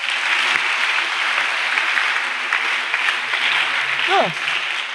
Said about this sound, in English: God is waiting for you to be victorious. Somebody clap for Jesus.